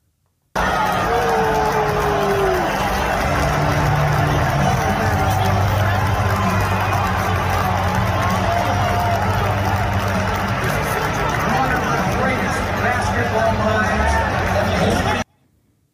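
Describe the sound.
An arena crowd booing, a loud, steady roar of many voices with low drawn-out boos running through a dense wash of chatter, holding for about fifteen seconds before cutting off.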